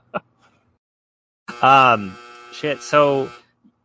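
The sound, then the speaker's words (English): A clothes dryer buzzer sounds: a harsh, buzzy tone in three bursts, one long followed by two shorter ones, after a brief click and a short quiet pause. “You probably just heard my dryer buzzer, and that is okay.”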